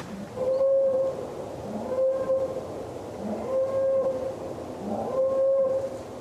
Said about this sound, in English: And then the woods all about me echoed with a strange mechanical sound. A boar call.